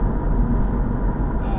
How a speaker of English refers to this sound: I'm not sure what the sound quality of this must be like, because I was here in the car, driving along now, and it sounds loud in this car.